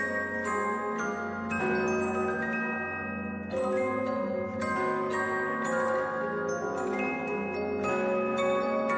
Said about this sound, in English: The bells are... I need to slow down the bells some more still. They're too quick, man.